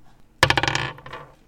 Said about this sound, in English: Are you rolling your dice?